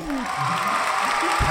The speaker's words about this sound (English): Yeah, can we get some applause right there